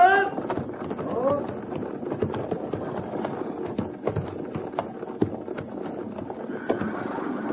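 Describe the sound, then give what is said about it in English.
Many horses' hooves clip-clop in a dense, uneven clatter as a mounted patrol arrives, carrying on steadily, with a brief whinny-like cry near the start and a faint murmur of activity underneath. “Dismount and unsaddle. Dry the horses.”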